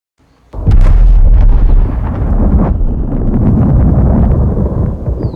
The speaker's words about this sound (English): Shaking like a leaf when you hear sonic booms isn't productive, Timothy. I'm scared. Why are you scared when you know what they are? Because they're loud.